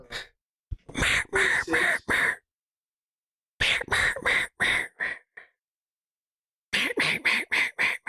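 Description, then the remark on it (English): A person imitates a goose call with their mouth: loud honking in three bursts of rapid, repeated calls, each run of four or five honks separated by a second or more of silence. “give me your best goose call.”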